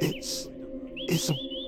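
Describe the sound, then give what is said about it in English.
A small bird sings, chirping and tweeting in quick bursts, with thin rising whistled notes and airy trills, clear over a low steady hum, with no one talking. “It's a bird.”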